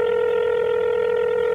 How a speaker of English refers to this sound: He dials his cell phone.